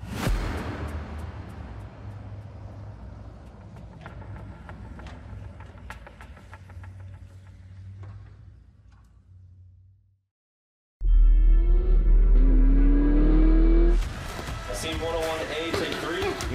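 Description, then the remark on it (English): A performance car engine roars loudly after a brief silence, its pitch climbing as it accelerates, following a stretch of low rumbling background noise with people talking. “You just drove these performance cars.”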